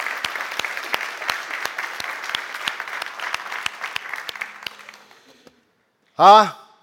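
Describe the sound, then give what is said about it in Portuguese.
A church audience applauds steadily for about five seconds to praise the Lord, the clapping thinning out and fading, followed by a short silence and then a brief burst of a voice. “Aplauda ao Senhor, que Ele merece.”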